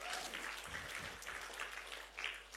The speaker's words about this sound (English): Give the Lord a clap of offering. Come on, guys.